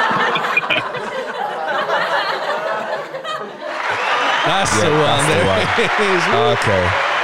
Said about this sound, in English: We got the applause in the end. We got the applause, yeah.